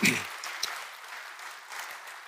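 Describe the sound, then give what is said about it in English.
An audience bursts into applause, a dense wash of clapping that holds steady at moderate loudness for a couple of seconds, with a few sharper claps standing out. “Come on, can we give her a round of applause this morning?”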